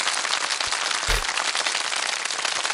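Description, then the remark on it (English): A steady round of applause, many hands clapping in a dense, crackling wash that holds at an even loudness, with a couple of low thumps near the middle and no voices. “Give yourself a clap, a round of applause.”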